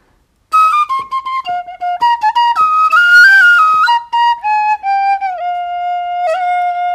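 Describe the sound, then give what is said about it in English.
A brass penny whistle from World War One plays a lilting melody, with quick ornamented runs and short tongued notes settling into longer held tones. It is loud and clear, with no voices. “playing this beautiful penny whistle made out of brass.”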